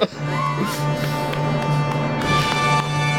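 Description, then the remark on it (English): One person applauds themselves briefly: a short run of sharp, uneven claps over a steady low hum and faint tonal ringing, with no one speaking. “I love that you applauded yourself.”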